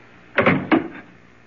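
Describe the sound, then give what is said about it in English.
A door shuts with two quick, solid knocks, a short thud followed by a sharper clunk a moment later, then a brief fading rattle. No one speaks. “I'm going to close this door.”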